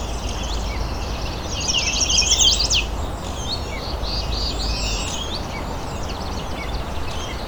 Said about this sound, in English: There we go, chestnut sided warbler. Fairly close up.